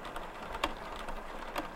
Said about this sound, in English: Oh, the printer started. Hopefully that's another document that's going to come out.